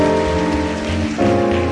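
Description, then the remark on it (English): A church audience claps their hands for first-time visitors coming forward to be prayed for, a dense, steady wash of applause, loud and continuous, with sustained musical chords playing underneath that shift pitch partway through. “Oh, clap for them as they come. Clap for them.”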